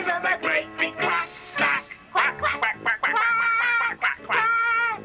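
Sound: people imitating duck quacks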